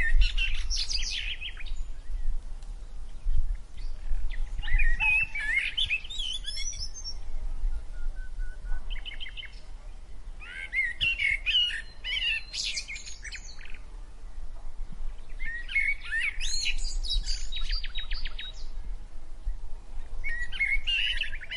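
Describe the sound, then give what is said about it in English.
Cheerful birdsong fills a forest, with bright chirps and trills arriving in repeated bursts over a low, steady ambient rumble. No one speaks. “The forest bid them goodbye with the same cheerful bird song that had welcomed them that morning.”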